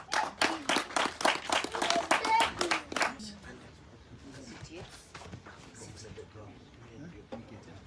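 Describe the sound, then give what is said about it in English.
An audience bursts into loud, brisk clapping for a few seconds, then the applause drops away abruptly, leaving faint scattered murmuring. “Clap for them. Beautiful souls. Clap for them.”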